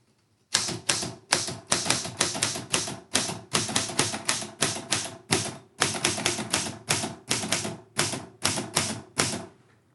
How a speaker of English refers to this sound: The clicking you hear is from Grandma's portable Underwood typewriter. I did a little research on this beauty and found that it was produced in the 1930s or 1940s. I just love the solid feel.